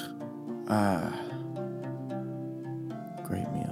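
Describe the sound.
A voice mimics a dad snoring: a loud, gravelly snort followed by a long, droning hum, then a rough, breathy inhale near the end. Fairly loud, with no other sounds.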